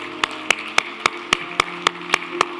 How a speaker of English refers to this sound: Let's applaud this spring day, okay?